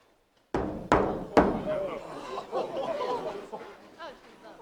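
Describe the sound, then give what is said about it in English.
Three loud, heavy hammering thuds from inside a buried coffin in a church cemetery strike about half a second apart, followed by a steady murmur of voices and chattering that carries on to the end. “Desperate, unmistakable hammering of life.”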